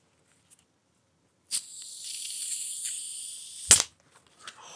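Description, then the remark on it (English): A bottle cap is twisted open, releasing a steady, high-pitched hiss of escaping gas for about two seconds, which ends in a single sharp little snap. No one speaks. “I think the bottle's letting us down, and then it did that little snap at the end.”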